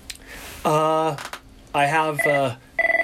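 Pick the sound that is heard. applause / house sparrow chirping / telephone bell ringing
telephone bell ringing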